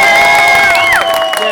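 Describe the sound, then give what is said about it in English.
A loud crowd cheers and whoops, with sustained shouted voices rising and falling over a dense wash of clapping, all in one short burst, as an audience cheers for a host being introduced. “Thinks just about how excited you are to cheer for the leader of the show”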